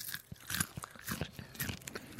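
Crisp, repeated crunching as a whole roasted cricket is chewed, with irregular bursts of crackly, bright bites over a soft low thud of jaw movement, fairly quiet and with no talking.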